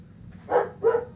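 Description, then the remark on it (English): A dog barks twice in quick succession, two short, fairly loud yaps about a third of a second apart over a low background hum, with no voices. “I love that insane dog.”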